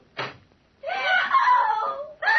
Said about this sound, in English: What was that scream I just heard? It's your patient, Dr. Manette.